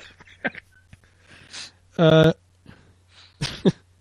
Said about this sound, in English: Boy, I don't know what it is. I've just been coughing all day.